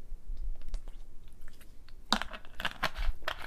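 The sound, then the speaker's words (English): Someone takes a drink of water: soft, muffled handling at first, then a quick run of sharp crackling clicks and moist mouth sounds over the last second and a half, with no talking. “Hold on, let me take a drink of water.”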